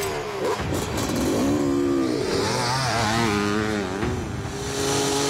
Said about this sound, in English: Uh-oh. Badass Miz on a motorcycle.